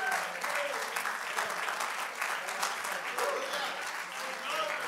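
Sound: audience clapping hands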